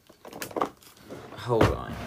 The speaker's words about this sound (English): She's seeing what she's got. We're opening drawers here.